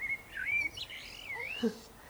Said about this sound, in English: Can you hear him? The blackbird's playing his flute.